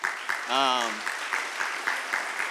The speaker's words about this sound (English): Awaken sent 4 mission trips in 2018. Can we just like applaud that? It was amazing.